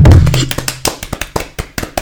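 A quick run of sharp hand claps, about a dozen in two seconds with a steady, slightly uneven rhythm, opening over a brief low hum before the clapping carries on alone.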